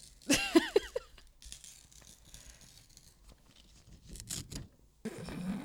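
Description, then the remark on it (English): Paper is torn in a few quick rips at the start, followed by quieter rustling and crinkling, then another burst of tearing near the end. “That was tearing paper.”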